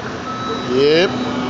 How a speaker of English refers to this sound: You hear all this beeping noise, we at work, y'all. Don't mind the noises.